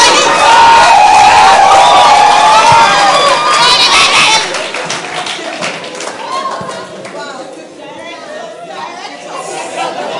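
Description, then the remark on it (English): A large crowd of protesters shouts loudly, many voices overlapping with scattered claps, before easing after a few seconds into a softer, continuous crowd murmur and chatter. “They are activists and protesters. They make a lot of noise.”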